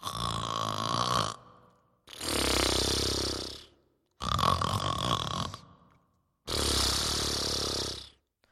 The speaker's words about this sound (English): Soon she heard him snoring.